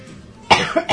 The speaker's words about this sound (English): When I'm not coughing. Which I'm not as much as I thought I might, but maybe that's because I'm not talking a whole lot.